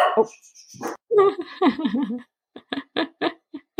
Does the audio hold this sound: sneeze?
no